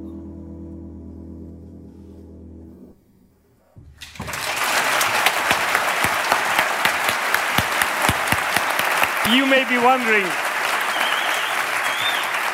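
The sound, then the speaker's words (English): A man speaks briefly, then loud, fast hand clapping starts and continues in a steady, rapid rhythm for several seconds, with a short vocal sound rising briefly over the claps. “You may be wondering why I'm clapping.”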